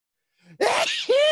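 A single loud sneeze: a quick breathy inhale, then a sharp explosive burst that trails off into a drawn-out voiced cry.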